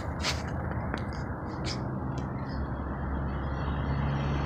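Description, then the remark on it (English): A bus engine rumbles loudly and steadily, with a few short sharp hisses of air brakes bursting over it early on, as someone gets off the bus. No one speaks. “Just got off the bus.”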